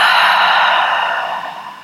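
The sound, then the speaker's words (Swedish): After a deep breath in through the nose, a slow, steady breath is blown out through the mouth, airy, gradually fading over about two seconds with no talking. “Och vi släpper långsamt ut genom munnen.”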